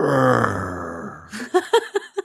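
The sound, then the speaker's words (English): A person imitates the sad groan their 5-year-old dog Bueller makes when petted while lying down: one long, low, drawn-out moan that sags slightly in pitch, followed by four short, choppy bursts of laughter. “My dog has started doing this thing. Like when he's laying down and I pet him, he goes.”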